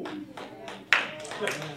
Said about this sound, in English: Come on. One clap, we all clap.